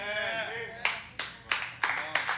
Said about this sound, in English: Hear that nervous clap?